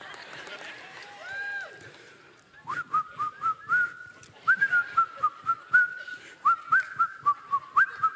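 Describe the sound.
After a brief murmur of voices, someone whistles a bright, clear tune in short phrases, accompanied by a steady rhythmic tapping beat throughout.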